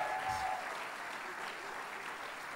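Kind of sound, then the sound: crowd, audience applause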